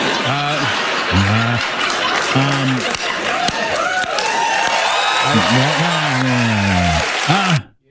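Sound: cheering and applause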